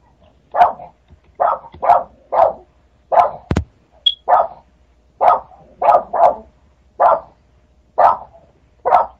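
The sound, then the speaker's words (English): A dog barks about a dozen times in a steady, repetitive rhythm, each bark sharp and fairly loud, with brief pauses between them and no talking. “I'm hearing a dog back. Bark.”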